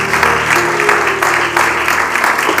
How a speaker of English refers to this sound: Would you just go ahead and clap your hands to the Lord one more time? Hallelujah.